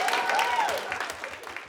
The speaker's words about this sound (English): Give our first judge a big round of applause.